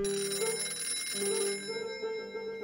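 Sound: telephone ringing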